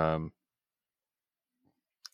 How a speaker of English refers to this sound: And the clicking is getting loud over here.